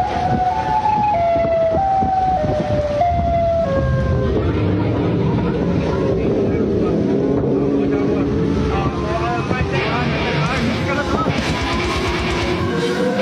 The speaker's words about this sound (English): This is Siren Head audio.